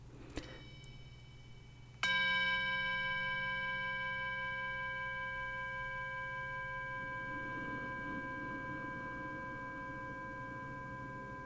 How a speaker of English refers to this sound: So we'll begin the meditation with a bell, and we will end with a bell.